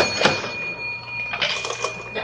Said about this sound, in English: Come on, Kramer, let's go through the cash register. All right, McGee.